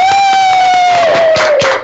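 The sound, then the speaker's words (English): Loud applause and cheering for a guest being introduced, with a long sustained whistle that slowly drops in pitch over a dense wash of crowd noise and scattered sharp claps. “Please give a big round of applause for”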